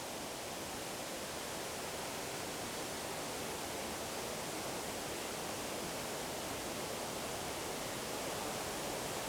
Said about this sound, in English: So just coming up to the top waterfall.